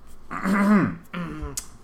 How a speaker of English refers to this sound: clear my throat.